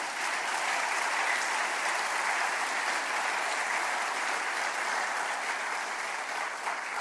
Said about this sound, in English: His longevity is incredible, and his faithfulness is to be commended. In fact, if there's a place to applaud, this would be the time.